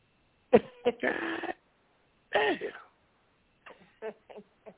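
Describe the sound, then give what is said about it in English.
A dog gives a few short, sharp yelps followed by a longer whining cry, then some softer scattered yips, with brief pauses of silence in between. “Hey man, who dinging like that? Hey, close I'm the sorry, door. That's me. My dog.”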